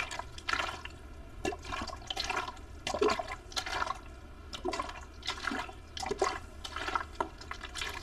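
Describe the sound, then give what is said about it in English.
Running water sloshing and splashing in uneven bursts over a steady watery hiss, with no voices present, made as water ASMR. “Hello guys, today we will be doing water ASMR.”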